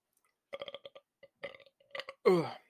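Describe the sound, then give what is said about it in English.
A string of short, choppy vocal bursts leads into one loud, croaky burp, lasting about half a second at the very end. “So you burp like a pussy.”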